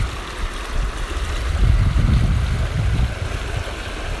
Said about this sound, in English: Just picture yourself sitting by that waterfall, how the rocks are beating off of the water, and the water so gracefully goes around it.